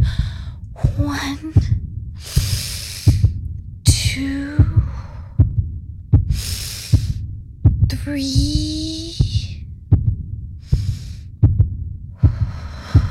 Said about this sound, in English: By the time she got to 10, her heartbeat had slowed and she was feeling a little better.